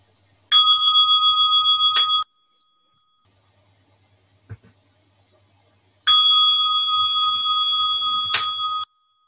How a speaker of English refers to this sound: Okay, and now we sit for 5 minutes, and then we'll write for 5 minutes, and I'll ring the bell at the end of the first 5 minutes.